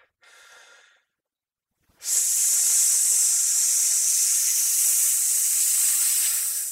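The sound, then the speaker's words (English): A short breathy inhale, a brief pause, then a long, loud, steady hiss of forced breath through the teeth lasting several seconds before tapering slightly, made while clenching the buttocks and pulling in the abdominal muscles, as a singing exercise for hitting high notes. No speech. “So, but it just hiss and clench my butt cheeks while I'm doing it.”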